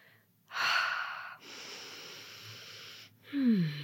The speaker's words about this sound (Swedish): Grasping for air. Flämtande, fjärils andning. Och då märker jag direkt att mitt andetag blir...